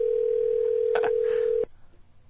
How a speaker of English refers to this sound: It's like a double ring on top of each other? Yeah. On top of each other.